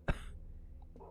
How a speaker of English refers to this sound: She starts heading in, and you can hear coughing from someone.